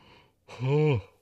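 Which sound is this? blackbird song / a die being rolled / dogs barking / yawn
yawn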